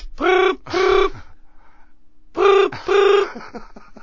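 A telephone rings in two double bursts, ring-ring, a pause, then ring-ring again. The tone is loud and electronic, with no voices.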